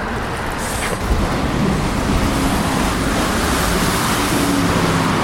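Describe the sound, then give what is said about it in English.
A steady, loud roar of busy road traffic on the New Kent Road in slushy weather, a dense continuous rush of passing vehicles with no pauses and no voices. “And, of course, the traffic noise is pretty profound.”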